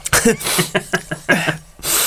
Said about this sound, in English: We need to sneeze. Look at light. Apparently, you're supposed to think of a pineapple.